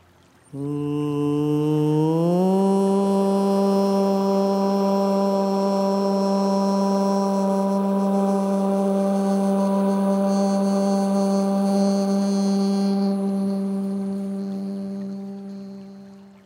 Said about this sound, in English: This time when you make this Om sound, feel that your own body, your every cell is absorbing that sound. Breathe in.